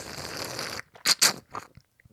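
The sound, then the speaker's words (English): A quiet slurp of coffee: a breathy sip lasting under a second, then three short wet gulping bursts and a faint click, with no talking. “How do you feel about this sip of fucking coffee?”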